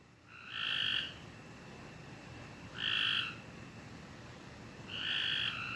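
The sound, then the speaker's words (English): Bullfrogs croak at night in three loud, buzzy calls, each about half a second long and spaced roughly two seconds apart, over a steady hiss of background noise, which may be crickets and locusts. “Right now, to be honest, I think those are bullfrogs, locusts, crickets.”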